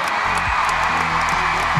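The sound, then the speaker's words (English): A large crowd at John Cain Arena roars and cheers as the Australian Diamonds win their match, in a dense, steady wash of noise that holds at a loud, even level throughout, with no clear voices standing out. “Hear the crowd roar.”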